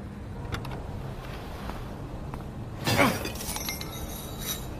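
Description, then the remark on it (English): A single sharp metallic smash of a padlock being broken on the gate of an airport landing strip rings out over a steady low rumble of an idling vehicle, with a few faint clicks before it. “smashed a lock on the landing strip's gate, and we drove right on the runway.”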